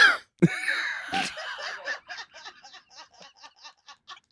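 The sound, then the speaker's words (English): A person clears their throat: a rough, gravelly vocal noise that breaks into a quick run of about a dozen short, clucking pulses, with no words spoken. “That's not like a full cough. That's just like something's in my throat.”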